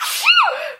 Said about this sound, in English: and it's probably the goat dander. It's goat and dander. Also. Yeah. Also. Gesundheit. Thank you.